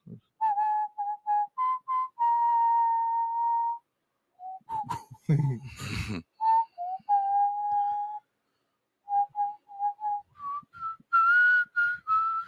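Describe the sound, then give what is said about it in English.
Someone whistles a song melody, mixing quick short notes with long held tones, pausing briefly amid a burst of rustling noise, then finishing on a higher, rising phrase. “Hey, guys, come on our show and show us how you whistle.”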